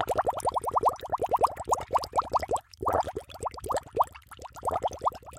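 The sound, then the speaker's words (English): A submarine resurfacing effect of rapid, bubbly water plops, each a quick rising blip, pouring out in a steady fast stream for several seconds with one brief pause midway. No one speaks. “So let's go ahead and resurface and let you go.”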